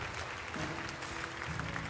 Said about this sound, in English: Give God a good hand clap of praise this morning. Hallelujah.